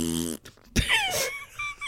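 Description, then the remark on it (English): A voice blows a buzzy, blaring raspberry that mimics a fart played as the horn call of Buckland, fairly loud, followed by a sharp burst and a sliding vocal whoop. “Are you telling me that if an enormous fart ripped over the Shire, every hobbit would not wake up laughing?”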